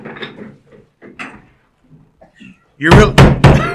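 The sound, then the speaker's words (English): An office chair being rolled around bumps loudly against something, producing a quick series of heavy knocks and thuds after a stretch of quieter background talking. “You're really going to have to quit rolling the chair all over the place.”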